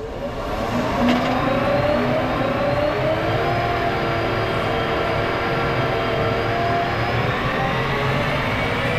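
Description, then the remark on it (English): All-electric, driver-optional smart tractors roll steadily forward out of a factory with a continuous motor whine and low rumbling drone, holding a fairly loud, even level throughout with no voices. “And let's see these tractors roll off from this beautiful factory.”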